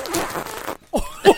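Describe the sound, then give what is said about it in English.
A crinkly plastic Lay's chip bag rustles and tears open, then after a brief pause lets out two short, low, sputtering fart-like squeaks. “It actually made a fart noise.”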